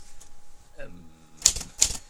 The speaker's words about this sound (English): Yay, jam the typewriter. I didn't jam the typewriter.